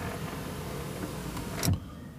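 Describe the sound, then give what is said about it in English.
A motorcycle passes by, its steady engine roar swelling to a brief loud peak before quickly dropping away. No one speaks. “After the motorcycle.”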